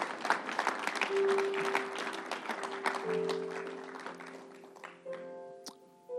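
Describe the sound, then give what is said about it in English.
A crowd claps steadily for about five seconds after a preached message, a dense patter of many hands that thins and fades out, while sustained keyboard or organ notes swell underneath and carry on after. “If this word blessed you, let's give it a hand clap if the Lord spoke to you today.”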